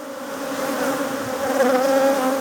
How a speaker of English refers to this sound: Then you have a sound installation. You will hear the sound of bees. These are bees that were recorded in Belize, actually in a sculpture park in Belize that's called Pustinia.